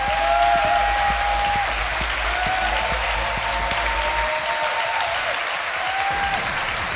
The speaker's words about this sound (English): please give a massive round of applause to my fantastic guest